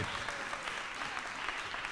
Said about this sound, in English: So big round of applause for this side.